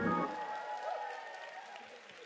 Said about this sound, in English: And I want to hear the church clap your hands and give God praise. Come on. And give these guys a good hand clap.